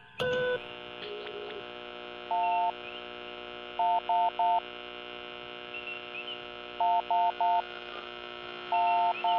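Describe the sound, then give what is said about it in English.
A faint, Morse-like SOS distress signal, received by a ship and played on loudspeaker, coming from 5 parsecs starboard: steady electronic beeps, short ones in groups of three with longer tones, pulsing over a constant buzzing hum and static interference. “It's definitely an SOS, Captain.”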